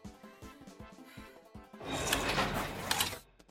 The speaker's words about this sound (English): The elevator door started closing, blocking Monty's pursuit.